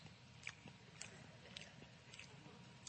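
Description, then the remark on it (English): A person imitates an Angus cow chewing its cud with wet, squishy mouth sounds, a steady rhythm of chomps about every half second, fairly quiet, with no talking. “there's an online video on YouTube that you can get on YouTube and you can see a picture of a cow chewing a cud.”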